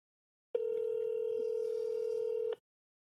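A single steady electronic phone ringing tone sounds for about two seconds over a speakerphone, moderately loud and slightly tinny, then cuts off into silence. No one talks.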